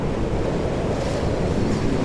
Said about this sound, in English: The wind wails. It moans loudly, then seems to sag as it rests, ready for its next holler.